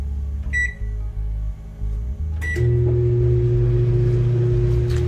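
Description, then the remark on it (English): A small microwave oven gives a couple of short electronic beeps, then a click as it starts up and settles into a steady mechanical hum that continues to the end. “I should just turn the microwave on.”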